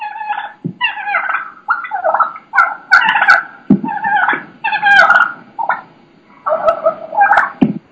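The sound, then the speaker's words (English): Wild turkeys purr and yelp in a continuous, agitated string of calls, with a few dull thumps and scuffles mixed in as they attack a decoy; no one speaks. “They're beating on my decoy. You can hear that.”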